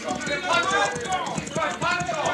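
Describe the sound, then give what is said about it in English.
Horses' hooves clip-clop in a steady rhythm, drawing nearer over a busy, dense background with voices murmuring underneath. “Oh, those horses.”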